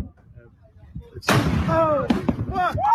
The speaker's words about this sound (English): splash, goes into the ocean, and then explodes